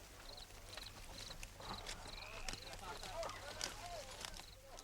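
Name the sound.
horse hooves clip-clopping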